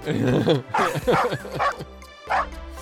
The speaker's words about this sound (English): A dog.